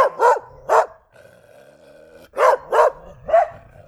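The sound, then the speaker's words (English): A pet dog, left out of her crate, barks loudly: two sharp barks, a short lull with a faint steady drone, then three more barks in quick succession. No one speaks. “Now, I will pause here and go check on my dog.”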